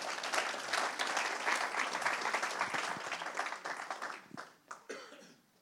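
A crowd applauds steadily with dense, crackling claps that hold for several seconds, then thin out and fade, with a few scattered coughs near the end.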